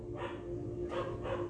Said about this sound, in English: You hear the dog barking in the background. I guess that's confirmation.